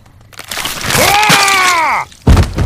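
A drawn-out, wavering vocal cry is cut short by a single loud, cracking blow that hits hard as a man's head is smashed in.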